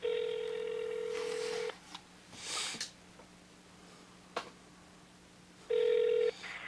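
A telephone line rings with a steady electronic ring tone on a call to Burn Dairy on Thompson Road, then a gap holding a soft rustle and a click, followed by a second shorter ring. No one speaks.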